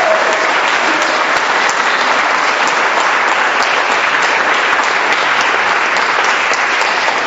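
An audience claps steadily for several seconds in applause for a testimony, a dense, loud wash of many hands with no talking over it and no break in the applause.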